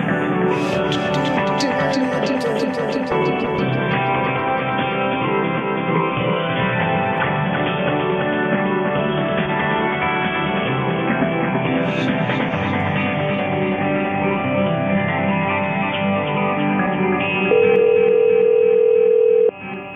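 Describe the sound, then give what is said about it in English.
Tinny, phone-quality hold music plays steadily and continuously while a caller waits on hold for a store's sales associate, with no talking over it, until a sustained electronic beep cuts in near the end. “I was calling about something, but I just heard the song there.”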